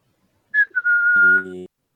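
A person whistles one steady, fairly loud note for about a second, with a brief low buzzing hum joining at the end before both cut off.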